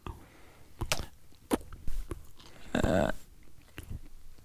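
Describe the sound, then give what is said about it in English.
Chocolate chip cookies being chewed mukbang-style until all are eaten, with repeated crunchy bites and moist mouth sounds in an uneven rhythm, including a louder, longer crunch partway through; no one speaks. “So you brought in some cookies and they're chocolate chip. Yeah. And now they're all gone because you mukbanged them all.”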